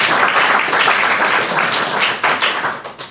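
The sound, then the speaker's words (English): A quiz audience claps for a team after a round, in a steady, dense, loud burst of applause lasting a few seconds, with no voices over it, thinning slightly toward the end. “All right, round of applause for serious actors.”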